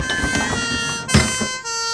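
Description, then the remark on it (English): An ambulance siren sounds as a loud, steady wail of layered tones, its pitch stepping to a new note near the end, with a brief burst of noise cutting through midway. “The ambulance is here now.”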